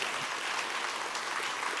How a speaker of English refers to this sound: Come on, give the Lord a hand clap on that.